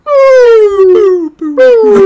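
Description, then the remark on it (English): A human voice imitates a whale call with long, loud, moaning tones that slowly slide downward in pitch, broken into three drawn-out wails with a brief pause before the last. “Whales talk in tones. They don't use a lot of consonants.”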